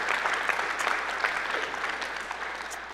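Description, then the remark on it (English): A crowd claps steadily after an announcement that property has been found, the dense, crackling patter of many hands holding at an even level for the full three seconds, with no voices standing out. “Y'all can applaud that.”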